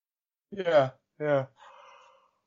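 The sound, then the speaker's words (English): Buggles, a pet, yawns: two short, squeaky vocal bursts trail off into a thin, wavering whine that fades out, with no one talking over it. “Oh, Buggles yawning.”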